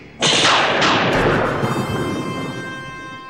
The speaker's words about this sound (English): A bolt of energy shoots from the being's eye and then strikes Kirk full in the chest, knocking him to the ground.